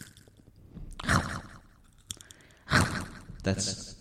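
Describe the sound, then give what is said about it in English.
Loud crunching as someone bites into a chip: three crackly bursts spaced roughly a second apart, with quiet breathy sounds in between. “When you take a crunch, when you take a loud crunch with this on. Take a bite by a crunch.”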